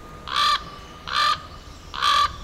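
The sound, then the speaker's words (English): Three harsh, croaking raven calls at the Juneau, Alaska landfill, in a steady, evenly spaced rhythm, each short and fairly loud, over a faint constant background noise with no voices. “And you used to be able to find lots of ravens, too.”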